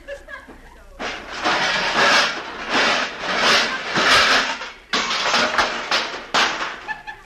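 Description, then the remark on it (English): A heavy stove that was part of a door barricade is dragged and shoved across the floor: a loud, grinding scrape that surges in several pushes over about six seconds, with a few dull thuds between them. “And the stove.”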